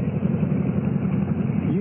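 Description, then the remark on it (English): A motorbike pulling up on a road at a rise over an old abandoned single-track railroad, its engine a steady, low, throbbing rumble that holds an even level throughout, with a short upward swell in pitch just at the end. “Boy, I could have run you down with my bike just now.”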